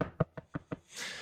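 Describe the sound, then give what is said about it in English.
Four sharp, clear knocks on wood in an even, quick rhythm, followed by a brief hiss of breathy noise. “Knock on wood if you're with me, boys.”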